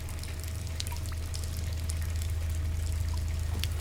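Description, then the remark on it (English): Water runs steadily from a tap in the background, a constant rushing with faint splashes and a low hum underneath, continuous for the whole stretch with no voices. “I'm not going to turn off the water.”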